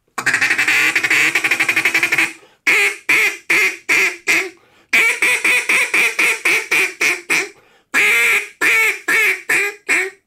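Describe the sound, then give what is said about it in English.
A raspy duck call blown loud as a mating call: a long buzzing quack run, then bursts of rapid, choppy quacks in quick rhythmic series with short pauses between, no talking. “But I like raspier duck calls.”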